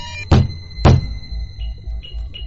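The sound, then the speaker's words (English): Two heavy, dull thumps on a control console land about half a second apart, loud, over a low humming drone with faint electronic tones beeping afterward. “But a few well-placed thumps and...”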